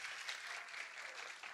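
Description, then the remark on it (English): A crowd applauds steadily, many hands clapping in a dense, continuous patter that holds an even loudness for the whole moment, with no voices standing out. “Why don't we clap it up for them one aplausos, more time? Aplausos para ellos.”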